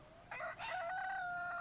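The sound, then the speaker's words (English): A rooster crows once, loud, a bright strained call that dips briefly before stretching into a long drawn-out note. No one speaks over it. “Where is this rooster, bro?”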